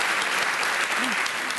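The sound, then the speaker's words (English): Steady, dense, sarcastic applause with a dry, even crackle of many clapping hands, holding at the same loudness throughout with no talk over it. “My applause was sarcastic.”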